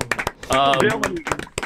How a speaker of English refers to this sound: Round of applause.